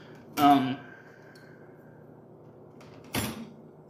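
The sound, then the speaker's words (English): Two sharp clattering knocks of dishes and glass being handled while washing dishes, the first louder with a brief ringing tail, the second about three seconds later; faint background hum, no talking. “I'm doing dishes, so I'm concentrating on things.”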